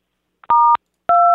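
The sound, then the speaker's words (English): Two loud telephone keypad tones from dialing sixes, each a steady dual-pitched beep lasting about a quarter second, separated by a brief silence; the second tone is cut off at the end. “I'm dialing a bunch of sixes.”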